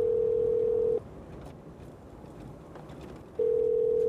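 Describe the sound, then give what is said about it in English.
A phone's ringback tone while calling two people: a steady, mid-pitched electronic tone sounds for about a second, pauses for over two seconds, then starts again. No one speaks over it. “I'm gonna call the two right now.”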